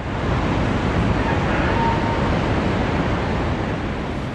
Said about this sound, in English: Torrents of water are cascading downstream, and at least 8 different towns and villages have already been submerged by the rising tide.